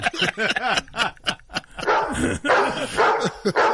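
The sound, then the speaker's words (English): A dog barks repeatedly in quick, uneven bursts, loud, with sharp yappy barks running into rougher, growly barking toward the end. “What, you can play the dolphin, I can't play the dog”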